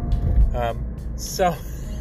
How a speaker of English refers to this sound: Right now I'm just a little frantic because I'm trying to drive in traffic. And did I miss my turn? No, I did not.